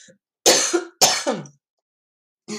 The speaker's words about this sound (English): I'm giggling over here because I was trying to be all perfect for the podcast and find myself needing to cough after drinking my hot lemon tea.